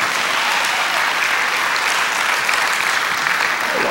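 Steady applause from an audience, a dense wash of many hands clapping at an even, sustained loudness for several seconds with no pauses and no voices.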